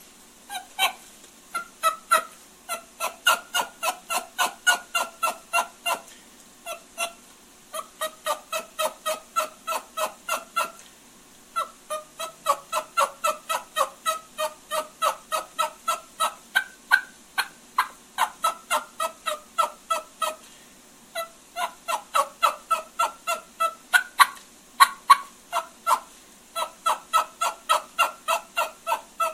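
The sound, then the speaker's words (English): A turkey hen's walking yelp, as made by a hen walking from one place to another, imitated on a call: long, steady runs of evenly spaced yelps, loud, broken by brief pauses between sequences, with no talking. “But this is kind of like a little demonstration of what a walking yelp sounds like of a hen who's walking from one place to another.”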